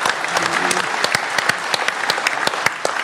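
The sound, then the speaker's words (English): An audience claps steadily for a few seconds for a person asked to stand up, a dense patter of many hands with sharp individual claps standing out, and a voice briefly murmurs beneath it. “Stand up. And take your applause, sir.”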